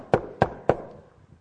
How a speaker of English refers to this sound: Am I knocking on the wrong door?